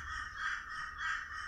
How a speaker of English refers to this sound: I apologize for the crow in the background. He's waiting for us to be finished, too.